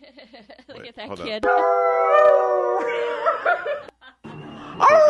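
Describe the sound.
Sustained, wavering howls trade off among four voices, young boys imitating a dog and then a real dog howling last, long tonal cries with brief gaps, loud, with some chatter at the start.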